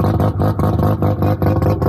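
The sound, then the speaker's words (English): A car with a 13B rotary engine idles, its loud, choppy exhaust loping in a steady uneven pulse of deep, brappy bursts, with no voices over it. “Now, of course, people who live in probably more working class suburbs of Sydney and Adelaide would be more familiar with this sound, which is the sound of a 13B rotary at idle.”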